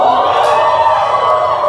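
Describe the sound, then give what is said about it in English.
A large crowd screams and cheers together, a loud, sustained wall of voices that stays dense and steady without letup for the whole couple of seconds. “Somebody scream a bit.”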